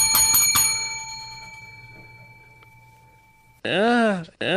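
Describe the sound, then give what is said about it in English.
A bright bell is struck three times in quick succession, then its metallic ring fades out slowly over a few seconds before a voice begins speaking. “That's worth the hearty ringing of the bell.”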